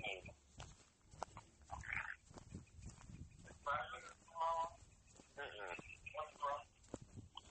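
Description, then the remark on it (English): Chihuahuas yapping in several short, high-pitched bursts, scattered across the moment with a voice talking intermittently underneath and between them. “Dang chihuahuas.”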